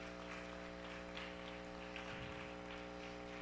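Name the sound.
audience applause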